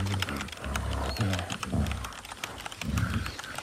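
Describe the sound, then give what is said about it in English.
An excited monkey lets out repeated low, hooting calls in short bursts, fairly loud, while the quick tapping clicks of his typing patter underneath. “just sits there quiet until it's time to type. The typing gets him all excited.”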